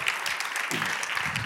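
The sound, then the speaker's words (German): Steady applause from a church crowd as a speaker comes on stage, a dense crackle of many hands clapping at an even loudness throughout, with no voices rising above it. “Applaus.”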